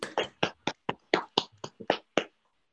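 A short burst of applause from what sounds like one person: about eleven crisp, sharp hand claps in a slightly uneven rhythm, then silence, with no talking.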